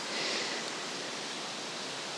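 Outdoor woodland ambience in woods near Helford Village on the east side of the Lizard Peninsula: a steady, even wash of soft hissing noise, like wind through leaves or running water, with no distinct calls or voices.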